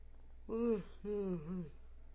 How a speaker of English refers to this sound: I guess I'm tired because I keep yawning